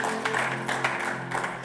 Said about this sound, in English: Come on, give the Lord a clap offering wherever you are.